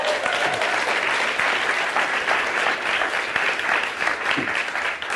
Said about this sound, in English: Jonathan Frizz, I mean, man, this guy's got a burden. You guys clap for Jonathan. Come on.